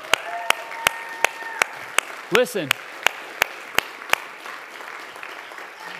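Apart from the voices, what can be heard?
audience applause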